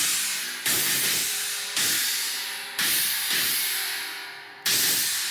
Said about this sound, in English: So gongs can be annoying, can be really loud. I love that. The first crash, people go like that.